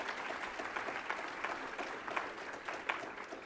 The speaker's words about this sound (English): So if you can give them a round of applause and for all the work they've done.